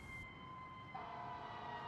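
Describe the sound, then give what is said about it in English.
An advanced life support ambulance siren sounds continuously, with a steady high tone that shifts pitch about halfway through, fairly loud against a background of traffic rumble. No one speaks. “The spectacle was temporarily dissolved by the wailing sirens and subsequent appearance of an advanced life support ambulance”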